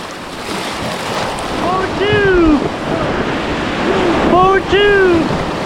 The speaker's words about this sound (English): Back on the river, we've just gone through another rapid.